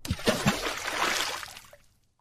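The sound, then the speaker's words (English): A single splash of something dropped into water: a burst of spray and sloshing that swells, then fades away over about two seconds, alone with no talking. “Put it in the sea. Sapaloosh.”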